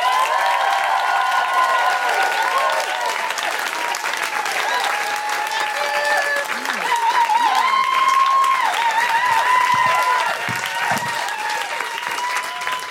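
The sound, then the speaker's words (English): A crowd applauds steadily with dense, even clapping, mixed with some whoops and cheers, sustained at a fairly loud level for about thirteen seconds without easing off, welcoming Aparna Nancherla. “Put your hands together for Aparna Nancherla.”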